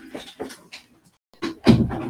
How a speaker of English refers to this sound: So now I just shut the door because he walked in and let's set a timer.